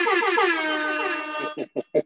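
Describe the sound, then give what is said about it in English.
A loud air horn sound effect: one long, slightly wavering blast followed by three short, punchy honks in quick rhythm, with no talking. “I got to do an air horn on that.”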